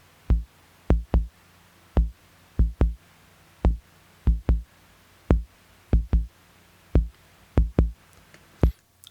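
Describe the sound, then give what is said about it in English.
A deep bass drum created by a Moog synthesizer thumps in paired, heartbeat-like double beats, loud, with a faint steady hum beneath and no voices. “This bass drum was actually created by a Moog synthesizer.”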